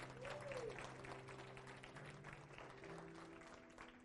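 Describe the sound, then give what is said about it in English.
An audience at a church service gives the Lord a big hand clap, clapping steadily in a dense, continuous wash of applause lasting several seconds. Sustained low musical tones hum underneath, and there is no clear speech. “Anyway, give the Lord a big hand clap.”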